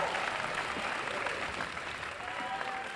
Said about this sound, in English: Okay, first of all, round of applause for both teams. They did an amazing job.